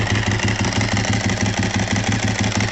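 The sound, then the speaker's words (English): A Ducati motorcycle engine idles loudly, its steady lumpy pulse overlaid with a fast, rhythmic dry clutch rattle, with no voices. “Oh, yeah, listen to that click.”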